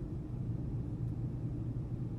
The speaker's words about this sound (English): He shifted his attention to looking out the porthole instead. I stared intently at the passengers all settling into their seats, as the rustling around me eventually slowed into only the dull rumbling of the engine.